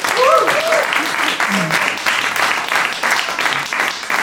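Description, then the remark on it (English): An audience claps loudly and steadily throughout, a dense rattle of many hands, with a few cheers and whoops rising briefly above the applause, clapping to vote research funding to Moldosaurus. “And clap if you'd like to give your funding money to Moldosaurus.”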